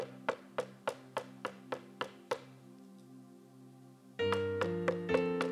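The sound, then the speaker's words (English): About eight steady knocks on a door in an even rhythm sound over a sustained keyboard tone, then stop as the music swells louder and fuller. “And this door, listen to me, the Holy Spirit, God, he can do anything he wants to do, but he's not going to force a door open on you. He's knocking.”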